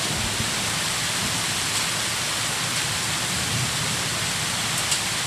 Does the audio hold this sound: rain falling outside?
yes